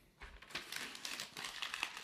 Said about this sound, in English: I like this little thing where you're crumpling up the paper.